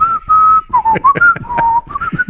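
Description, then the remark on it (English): A man whistles a short melody on his own, an old song from around the 1960s, a few sustained, mid-pitched notes that glide up and down, with breathy puffs between phrases as he hums out the tune from memory. “He would whistle it like I just did.”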